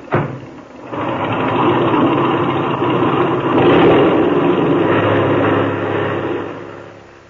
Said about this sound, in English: Now, set your brakes. Open that motor. And when I wave to you from the outside, take her off.